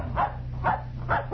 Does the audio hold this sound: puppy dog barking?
yes